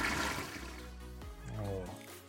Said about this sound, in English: Oh. And you flush all the way. Golly! Goodness gracious!